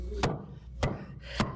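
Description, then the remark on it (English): Three sharp, solid knocks of a hammer striking wooden boards, evenly spaced about half a second apart, each a crisp woody thwack over a low, steady background rumble. “And as we hear humanity just hearing that noise, I'm sure many of them, just like me, I go to bed at times thinking, is somebody hammering?”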